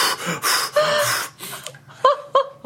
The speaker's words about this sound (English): I'm gasping for air.